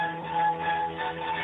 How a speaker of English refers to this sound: Please enjoy this Verizon ringback tone while your party is reached.